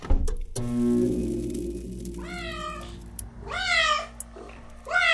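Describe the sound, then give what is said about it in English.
A kitten gives three high, wavering meows spaced about a second apart, clear, over a steady low electrical hum that starts just after a soft knock. “Oh, kitten. It's working.”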